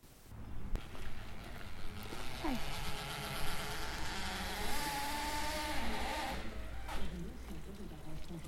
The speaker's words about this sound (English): It was full of flowers here, the hills, and full of bees, you know. So you actually were hearing the bees. It was amazing.